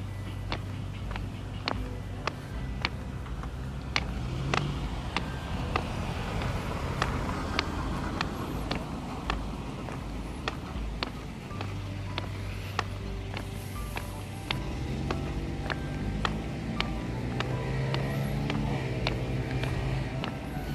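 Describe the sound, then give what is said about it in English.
A car passes by with a steady low rumble, accompanied by a regular, sharp clicking or clopping rhythm that repeats throughout, moderately loud, with no voices. “Interesting car.”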